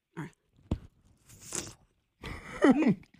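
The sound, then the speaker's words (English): A single sharp crunch as someone bites into the tip of a hot pepper, followed by soft wet chewing and rustling, then a muffled, wavering vocal reaction near the end. “Hold on, let me turn this down so you can hear us bite it.”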